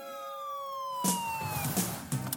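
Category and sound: vehicle, police car siren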